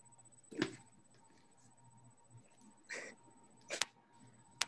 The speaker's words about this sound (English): I'm sorry, that's an accidental choke, but literally, wow, that's sick as shit.